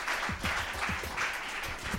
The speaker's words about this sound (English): Thank you all for coming tonight. Please give our presenters a warm round of applause.